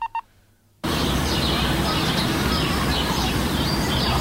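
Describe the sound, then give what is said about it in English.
Two short electronic beeps, then a dense, loud wash of noise with small bird chirps flickering through it high up, steady and continuous to the end. “Birds, not a dog.”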